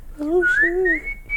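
A short whistle: a couple of brief sliding tones followed by a higher, steadier note, lasting just over a second with no talking.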